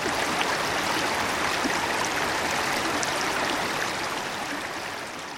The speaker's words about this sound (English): We follow the flow down the mountain, where the trickle comes together with another and another. Soon it's become a full-fledged mountain stream, home to rare speckled trout.